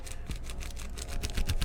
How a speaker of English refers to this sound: You can hear the crinkle there. That's just plastic rubbing against the parchment paper, which may help keep the tobacco fresher. I don't know.